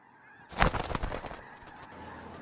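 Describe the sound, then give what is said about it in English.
Inside a factory, a sudden, loud burst of harsh, honking bird calls starts abruptly and trails off into softer squawks over a couple of seconds, with no voices. “What was that? The birds.”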